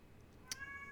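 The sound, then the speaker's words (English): A single upset meow from a male pet cat, starting with a brief sharp onset and then stretching into a drawn-out, tonal cry. It is fairly quiet, with no talking around it. “Yes, my kitty is very upset.”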